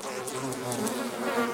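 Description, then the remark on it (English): A swarm of flies buzzes steadily, a dense droning hum that wavers slightly in pitch as the insects move about, continuous, with no voices. “And for a moment, you think nothing happens, that there are no flies coming. But then you begin to hear the buzzing.”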